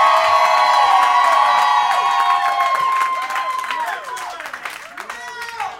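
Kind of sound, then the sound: crowd, audience cheering and applauding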